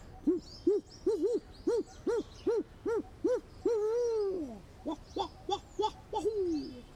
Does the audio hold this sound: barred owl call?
yes